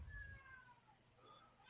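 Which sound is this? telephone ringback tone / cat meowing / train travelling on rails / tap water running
cat meowing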